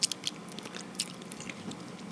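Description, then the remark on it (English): Crunching of someone chewing chips, with a run of crisp, irregular bites and crackles over about two seconds, fairly quiet and with no talking. “I did eat some chips on the air, too.”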